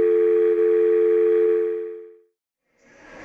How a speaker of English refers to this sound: The dial tone interrupted his sentence.